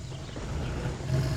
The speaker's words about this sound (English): Oh, fuck. You hear that? Okay. Big cat. Big cat problem here. Hold on. Oh, there it was. Oh, that's close.